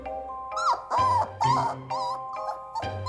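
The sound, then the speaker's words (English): A young pointer dog whimpers and yips in a run of about six short, high, whiny bursts with brief pauses between them, fairly loud and with no voices, as it tries to single out the cat Skittles from the pack. “The young pointer tries to point out that Skittles is not one of them.”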